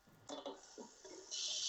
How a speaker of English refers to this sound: No, I'm filling up my glass of water.